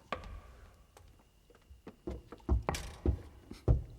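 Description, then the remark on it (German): A series of dull knocks lower down on a stone wall of a dungeon, spaced irregularly and starting faint, then growing into heavier, thudding raps toward the end. No one speaks. “Ich klopf mal weiter unten”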